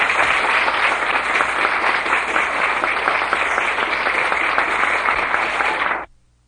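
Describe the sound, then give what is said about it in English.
A large audience applauds steadily, a dense wash of many hands clapping at full, even volume for about six seconds before cutting off abruptly into silence. “thank you very kindly for your heartwarming applause.”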